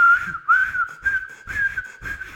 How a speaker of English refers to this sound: The lifeguard blew the shit out of his whistle.